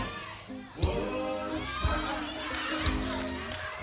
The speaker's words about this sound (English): We're gonna shout, bless his name.